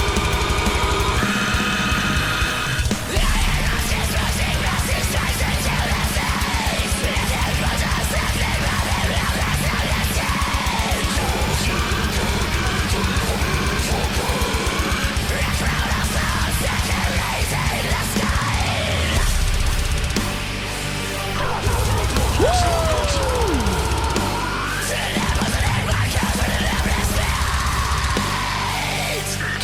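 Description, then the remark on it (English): Dense, heavily distorted deathcore plays loud and continuous, with harsh growled and screamed vocals over pounding drums and guitars, briefly thinning out near the end before crashing back in. “And now that I've been learning growls for about a year and screams and stuff, my brain starts to like analyze his growl, his scream.”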